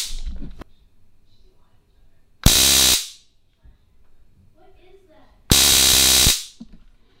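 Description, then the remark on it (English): Two loud, harsh bursts of stun gun electrical arcing, each a buzzing crackle lasting under a second, separated by a few seconds of quiet murmured talk. “This causes the visible arcing, light, and the audible warning to would-be assailants.”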